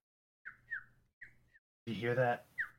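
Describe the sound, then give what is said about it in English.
Birds chirp in short, bright bursts, a few quick tweets spaced apart, with a louder, rougher burst of sound in the middle before one last chirp. “The sun is shining down. The birds are chirping.”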